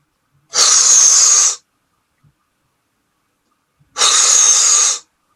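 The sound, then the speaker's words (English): Someone blows up a balloon in two long, forceful breaths, each a steady airy whoosh lasting about a second, separated by a few seconds of quiet. No one speaks. “I'll blow up a new balloon for you, but I won't like it.”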